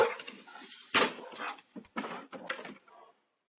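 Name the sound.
dog barking and whimpering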